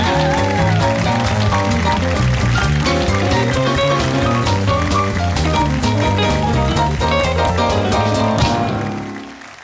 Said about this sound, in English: Well, that's some nice applause for somebody you never heard of before.